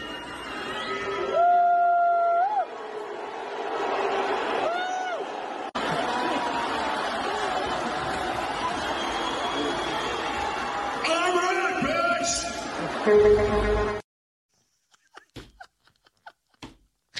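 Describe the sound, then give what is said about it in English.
A large arena crowd in downtown San Francisco booing loudly at a man who has walked on stage, mixed with scattered whoops and cheers, a sustained roar lasting about fourteen seconds before cutting to near silence with a few faint knocks. “Those of you booing.”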